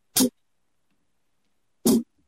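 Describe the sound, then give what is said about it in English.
Two short, dull thuds from an old plastic tub being struck, spaced well apart with silence between them. Each hit is brief and flat, with little ring or resonance. “And what I mean by that is, like, for example, I have here an old plastic tub, and it kind of makes a thud sound.”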